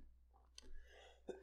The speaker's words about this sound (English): You son of a bitch. That was a regular cough.